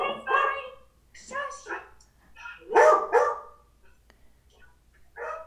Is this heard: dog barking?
yes